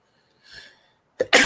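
A single loud sneeze: a soft breathy intake builds up, then a sharp explosive burst, with no talking.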